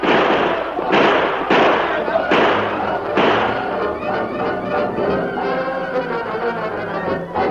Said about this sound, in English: Start shooting. We'll make them fight plenty before they get us.